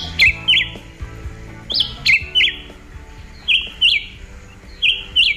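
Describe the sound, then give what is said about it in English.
A black-whiskered vireo sings short, energetic phrases of two or three quick, high whistled notes, repeated four times with brief pauses, over a low, steady background murmur. “Caribbean natives have given the bird nicknames like John Philip or Whip Tom Kelly, based on its short, energetic song phrases, like this.”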